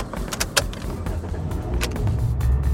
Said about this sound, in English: So we park in a nearby driveway, looking for any signs of life in the house. We're waiting and waiting. And then the black SUV pulls out of the driveway and hightails it down the road.